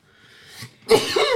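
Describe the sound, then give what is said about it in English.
A single sneeze: a brief breathy intake, then a sudden loud, hissing burst that trails off over half a second. Nobody speaks. “Bless you.”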